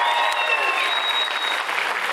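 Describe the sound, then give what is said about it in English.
A High Ridge audience breaks into loud, sustained applause for mothers on Mother's Day, a dense wash of many hands clapping steadily with a few cheers and whistles rising above it. “Your High Ridge family is going to tell you how much they love you by a big round of applause.”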